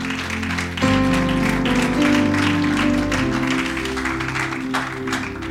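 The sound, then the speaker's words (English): A church audience claps hands together in praise to God, a dense, steady burst of applause, while a sustained organ-like chord swells in underneath and holds throughout. “In Jesus' mighty name, will you give God a hand clap of praise?”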